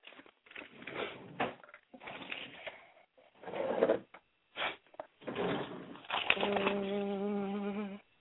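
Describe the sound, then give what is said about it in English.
Someone rummages through a drawer for a birth certificate: irregular bursts of rustling, sliding and clattering with short pauses, followed by a steady buzzing hum over the last couple of seconds. “My birth certificate is in my drawer.”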